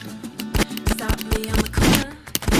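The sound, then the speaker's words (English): A rapid, uneven volley of loud gunshot sound effects from a soundboard, played over a song, about half a dozen sharp bangs fired close together, with a low hum continuing underneath. “Is this song worthy of gunshots?”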